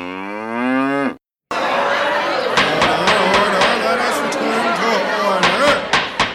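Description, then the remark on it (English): A cow gives one loud, drawn-out moo in the intro of The Dinner Party Show, then after a brief silence a crowded room of overlapping chatter and clinking clatter takes over. “Sacred cows roasted daily.”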